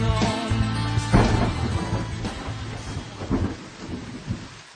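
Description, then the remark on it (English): Steady rain pours down with a broad hiss, joined by low rumbling thunder that swells and fades throughout. No voices, just a continuous stormy wash. “Started again. Rain coming down.”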